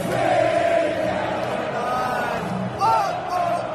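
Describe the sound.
A large football crowd at an England match sings together in a dense, echoing wall of voices, drowning out a broadcast, sustained sung notes rising above a constant roar for the whole few seconds, loud and continuous.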